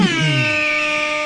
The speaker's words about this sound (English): it's eagle an eagle with an air horn. Fat fingers. I didn't mean for that to happen. Oh, no, happy accident! I just got to imagine an eagle like playing an air horn.